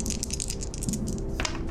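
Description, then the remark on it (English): Dice rattle and clatter for under two seconds as they are rolled for a power roll in a tabletop game, a quick run of small hard clicks and tumbling taps, ending in a sharper knock as they settle. “I'm going to make the power roll.”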